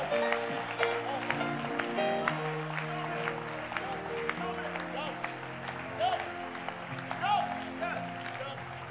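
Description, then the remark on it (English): An audience at a church service claps steadily together for the Lord over a dense, reverberant wash of voices and music, the applause sustained and fairly loud throughout. “Are you clapping for the Lord?”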